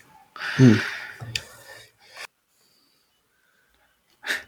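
A harsh, loud cough in a silence just before the show's outro opens with a throaty rasp, followed by two shorter coughs and, after a brief silence, one last sharp cough.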